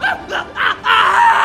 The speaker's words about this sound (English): Just screaming in pain.